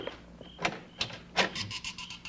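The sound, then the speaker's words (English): A house door is pushed open with a few scraping, creaky clunks spaced about half a second apart, quiet, with a faint whining tone trailing at the end and no voices. “Oh, the dead blasted door.”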